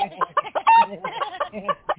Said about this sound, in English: Get your damn chicken off of me right now.